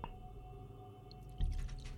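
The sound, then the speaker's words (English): A drink is poured into a glass, a wet trickling that starts partway through and grows louder and gurgly, over a low steady hum. “I got to pour myself a drink.”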